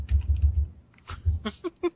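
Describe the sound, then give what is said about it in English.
Rapid computer keyboard typing, a burst of soft clicks and taps with a brief pause, then a few sharper keystrokes, fairly quiet with no voices. “stop typing.”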